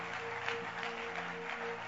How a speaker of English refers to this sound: Give the Lord a wonderful clap offering.